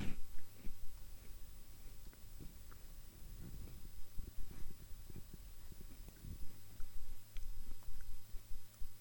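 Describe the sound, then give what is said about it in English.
Soft chewing of cookies, with a steady run of muffled crunches and mouth sounds at low volume and no talking. “I got some cookies on a little munchy munch, a little munch a doodle.”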